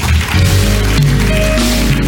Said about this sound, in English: Clap your hands, you may be seated.